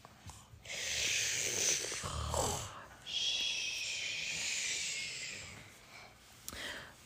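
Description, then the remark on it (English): A person imitates snoring with two long, breathy, rasping snores in a row, each lasting a few seconds, moderately loud, with no talking. “Can you snore for me?”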